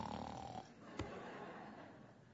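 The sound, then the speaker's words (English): A voice imitates snoring, acting out Peter sleeping soundly in Acts chapter 12, with a drawn-out, raspy rattling breath and a brief snort-like catch partway through, moderately loud with no other sounds. “That's how sound the guy, he's snoring.”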